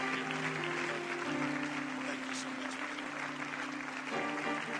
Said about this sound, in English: Shall we give that hand clap to the Lord together, everybody in the house of the Lord?